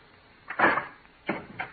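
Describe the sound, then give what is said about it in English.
A door is opened: a scraping clunk of the latch and handle, followed by two shorter knocks as it swings, fairly quiet, with no voices. “Please open the door.”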